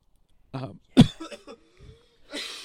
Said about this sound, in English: it's okay. Just cough it up. You're all right.